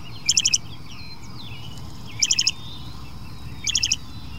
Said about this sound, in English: But this bird of prey is a songbird, a bit smaller even than a robin. It's a loggerhead shrike.